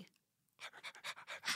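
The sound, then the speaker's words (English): A person imitates a dog's panting, breathing on another person: after a moment of silence, a run of about seven quick, breathy huffs in a steady rhythm, fairly loud. “Oh, they're just, okay, well, if you can see it here, they're just breathing on each other.”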